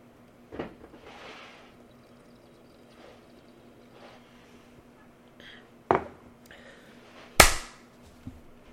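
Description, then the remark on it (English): A single loud, sharp hand clap cracks out near the end, preceded by a couple of softer knocks and thumps over a low, steady hum with no talking. “I did clap in the mic during your AFK period so you could find it on the recording later”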